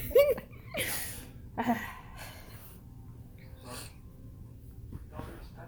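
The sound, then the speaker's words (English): A pet named Ranger sniffs and snorts around: a few short, breathy bursts spaced a second or two apart, with quieter snuffling in between and a faint background murmur. “I love you, but like, you picked the most inopportune time to just come sniff snopping around.”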